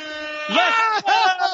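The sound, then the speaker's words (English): A loud, sustained air horn blast drones steadily throughout, with an excited voice shouting over it partway through. “It's got his own lasers, his own air horns.”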